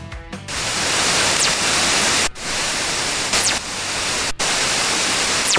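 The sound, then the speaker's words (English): Three different fast radio bursts, intergalactic radio waves, converted to sound: a steady, loud wash of hissing static, broken twice by brief dropouts, with faint high whistling sweeps gliding downward a few times. No voices. “Well, that is three different fast radio bursts.”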